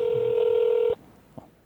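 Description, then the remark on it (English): A single steady ring tone of an outgoing phone call sounds for about a second, clear and fairly loud, then cuts off abruptly, leaving quiet line hiss and a faint click. “It's ringing.”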